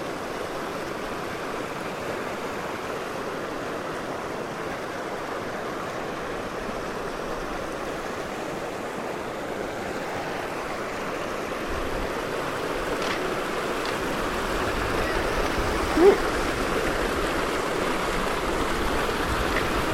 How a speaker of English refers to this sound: Okay. Little river crossing. That was wibbly wobbly. That was wibbly wobbly.